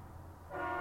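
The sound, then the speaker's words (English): A deep rumble gives way to a loud, blaring truck horn that starts midway and holds steady to the end, one sustained honk with no talking. “Like, when the trucks be honking, it sounds so obnoxious.”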